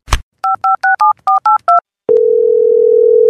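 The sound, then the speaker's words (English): A sharp click, then eight quick keypad dialing tones from a flip phone in a steady rhythm, followed by a loud, continuous phone tone holding until the end. Clear, with no talking. “Let's move on to today's message from the flip phone.”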